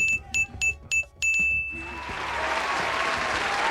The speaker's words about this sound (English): Ring the bell for that man one time.